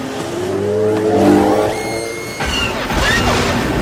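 A film speeder bike's loud engine roar rises in pitch, followed by a sharp hissing burst as it hits its air brakes and rumbling as the vehicle slows, all dense and whooshing with no talking.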